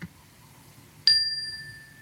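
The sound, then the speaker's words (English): A single clear cleansing chime, the first of three, strikes about halfway through, its bright metallic tone ringing out and slowly fading in a long sustained shimmer over quiet background. “We're going to start with three cleansing chimes.”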